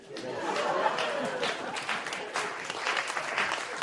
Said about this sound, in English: Seriously, you cheer for that one?